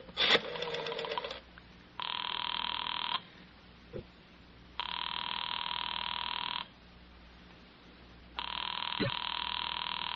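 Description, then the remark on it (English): A telephone rings over the line as a call is placed to Jesse, in three long, steady buzzing bursts separated by pauses, thin and phone-filtered, after a brief clatter at the start. “I want to get Jesse on the phone.”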